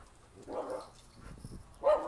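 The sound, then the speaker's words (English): Dogs that have found other dogs bark a few times, short sharp woofs spaced irregularly with a louder bark near the end, no talking over them. “They found the other dogs.”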